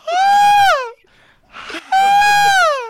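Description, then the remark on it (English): A voice imitates a high falsetto scream: two long, loud, piercing wails, each sliding down in pitch at the end, separated by a brief breathy pause. “when we put on it, we were editing it, and he was screaming at that like high falsetto, and his eyes were just, he was crying and he was screaming.”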